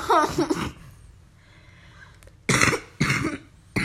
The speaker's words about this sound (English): That's why you're coughing. No, that's not why.